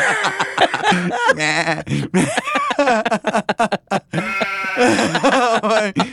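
A goat bleats repeatedly, loud wavering cries with a shaky vibrato, broken by brief pauses and a few sharp clicks, with no talking in between.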